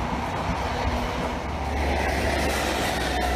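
passing train

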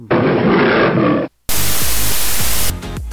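lion roar

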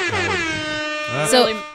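air horn sound effect

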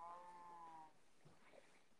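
cow mooing

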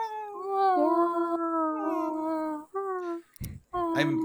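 cat meowing

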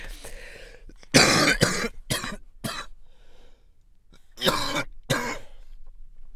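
coughing and throat clearing

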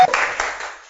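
audience clapping hands

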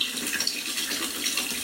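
water running

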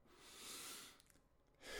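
inhaling

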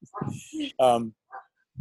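dogs barking

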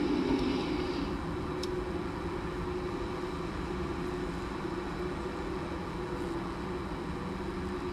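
street traffic noise

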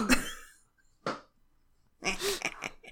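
burp

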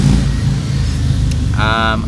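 cars driving past

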